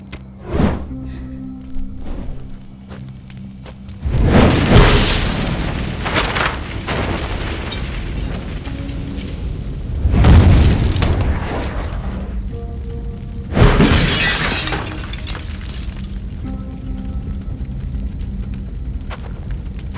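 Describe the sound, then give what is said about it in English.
Three heavy explosive booms burst out one after another as gas in a concrete bunker in the bayou blows up, each followed by a long, low rumbling roar that fills the gaps; no one speaks. “There's enough gas in that concrete bunker to blow the roof off.”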